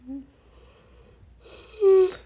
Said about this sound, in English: I can't stop yawning.